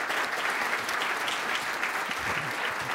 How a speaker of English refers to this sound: Today at the City Club, we have been enjoying a forum with the Honorable William Peduto, Mayor of Pittsburgh. Let's give this gentleman another round of Cleveland applause.